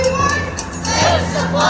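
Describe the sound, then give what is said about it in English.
A protest rally crowd in Victoria on Thursday, demanding government action on the drug crisis, shouting together: a loud, dense mass of raised voices with overlapping yells and chants sustained throughout the short stretch. “No punches were pulled on Thursday, whether it was at this Victoria rally.”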